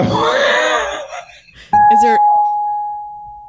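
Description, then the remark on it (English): Following a brief stretch of someone talking, a single guitar note, heard through a speaker, is plucked sharply and rings out clearly, sustaining and slowly fading over a couple of seconds. “That's my guitar.”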